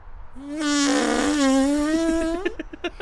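A long, loud, buzzy fart sound holding a steady droning pitch for about two seconds before breaking into a few short sputtering bursts at the end.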